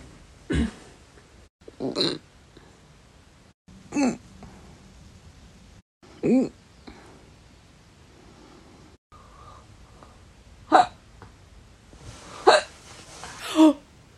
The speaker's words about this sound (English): Is that the hiccups? Retching. That's one from every night. I've got it. That's my alarm clock.